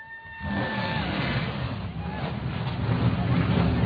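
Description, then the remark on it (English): Loud race car engines roar to life at the start command and rumble steadily a little way off, building into a dense, sustained revving drone that grows slightly louder toward the end, with faint crowd noise mixed in. “Now, listen, you've got to be super loud because these cars are loud.”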